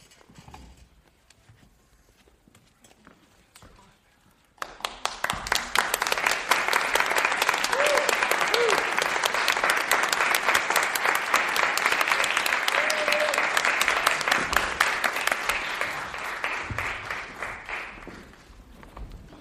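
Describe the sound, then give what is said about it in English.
A crowd bursts into applause after a reader finishes a Bible reading, following a few quiet seconds: a dense steady patter of many hands clapping that holds strong for over ten seconds before gradually thinning and fading out. “Yeah, so I meant to mention this actually in my introduction, but please feel free to clap after people are finished.”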